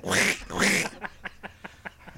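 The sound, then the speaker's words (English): Ducks quack: two loud, drawn-out nasal calls followed by a quick, steady run of shorter, softer quacks. No one speaks. “I heard ducks today.”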